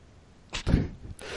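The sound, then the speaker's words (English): A single sneeze: a sharp, hissing burst that breaks into a louder, throaty blast, then trails off quickly. Nobody speaks. “Oh, excuse me, sorry. I had to sneeze.”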